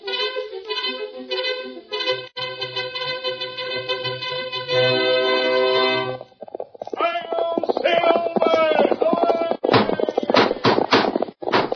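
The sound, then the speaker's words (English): Galloping hoofbeats of a fiery horse pound along with brisk orchestral music in The Lone Ranger radio drama, then continue under a man's dramatic voice, the rapid clip-clop loud in the mix. “Firing horse with speed of light, a cloud of dust, and a hearty "Hi-O, Silver!"”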